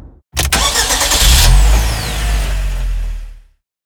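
A car engine cranks and catches with a sharp burst, then settles into a loud, steady low rumble for a few seconds before cutting off abruptly. No one speaks.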